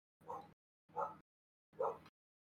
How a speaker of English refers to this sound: Even Richie's upset. He's barking down there.